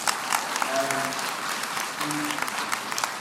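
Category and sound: crowd, audience applause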